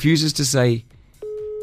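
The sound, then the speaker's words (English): A voice speaks briefly, then after a short pause a steady, flat electronic phone tone starts and holds, like an outgoing call ringing on the line with no answer yet. “If he answers your phone call, because he's not replying to me.”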